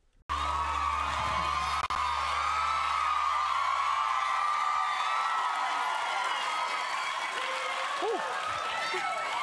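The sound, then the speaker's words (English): A large studio audience cheers and screams nonstop as Tyler comes out on stage, with shrill whoops and applause forming a dense, loud wall of noise that barely dips across the whole stretch. “So Tyler comes out, and I'm just going to warn you now, the crowd cannot shut up.”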